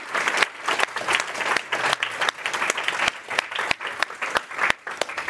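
An audience claps steadily for several seconds, a dense, even patter of many hands with scattered sharper claps standing out, loud and sustained without fading.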